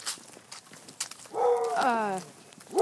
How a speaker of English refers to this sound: Oh, it's a pterodactyl bird. I hear it. It's a dog. It's a dog pterodactyl.